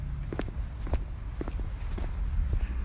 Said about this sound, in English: Yes, you can hear my footsteps.